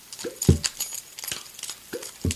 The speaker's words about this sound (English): Those two noises made the entire soundtrack of Frozen. Yeah, right? It's like, so... Here's the instrumental... That's all water stuff, and this is bells.